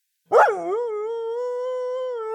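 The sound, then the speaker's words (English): A Canaan dog named Roo lets out a single sustained howl that starts with a sharp, wavering rise and then settles into a long, steady tone, loud, with no talking. “Roo, since you're a Canaanite dog, this story from Matthew 15:27 might shed some light on your past and how dogs were accepted in culture.”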